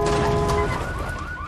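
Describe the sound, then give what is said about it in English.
A car alarm blares, a steady tone giving way to repeated rising whoops, moderately loud over a rumbling background with no one speaking. “Seriously, that car's got an alarm in this area.”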